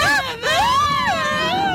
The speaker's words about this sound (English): Well, Frankenstein is, but by the sounds of the screams and the running, this monster's clearly trying to kill you.